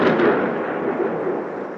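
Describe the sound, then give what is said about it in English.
A deep, rolling rumble of thunder from a terrible storm outside fills the whole moment, loud and continuous with a slightly crackling texture, fading only a little toward the end; no one speaks. “You can probably just don't leave the place. Because there's a terrible storm outside.”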